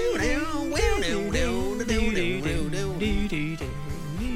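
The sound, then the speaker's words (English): The Rockford Files TV theme tune plays throughout, with a keyboard melody and a reedy harmonica line gliding over a steady bass, loud with no talking. “Playing it on the keyboard. I'm going to start learning these on my bass guitar. Oh, yeah, a bit of harmonica.”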